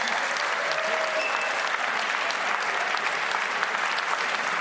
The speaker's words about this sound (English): And first up, it is really my great honour to introduce the legendary writer and comedian, Stewart Lee. He is going to introduce to us Jarett Kobek, so please give Stewart Lee a massive round of applause.